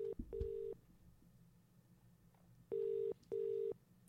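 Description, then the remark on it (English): A telephone ringback tone repeats in clear double burrs, two pairs of steady electronic rings separated by a pause, loud over a faint background with no talking. “Oh, you must have my number saved because you knew it was me ringing.”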